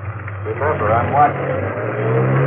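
A car engine runs steadily nearby with a low, throaty rumble, its pitch shifting slightly as the vehicle rolls slowly forward, then settles into a steady hum.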